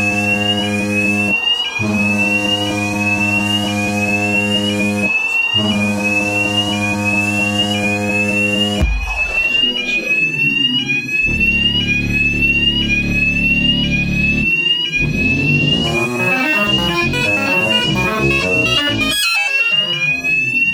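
A loud fire alarm blares continuously, a harsh electronic tone that cycles with brief breaks every few seconds, then turns rougher and more chaotic in the second half. Nobody speaks.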